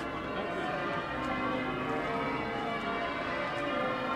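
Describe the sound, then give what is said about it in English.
The church bells of York Minster cathedral ring out in a continuous, overlapping peal on a bright blue-skied morning in early April, the eve of the Easter weekend, their tones blending into a steady wash of sound with a faint murmur of crowds gathering around the cathedral beneath. “The church bells of York Minster are ringing out as the crowds gather around the cathedral.”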